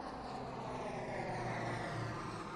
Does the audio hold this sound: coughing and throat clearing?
no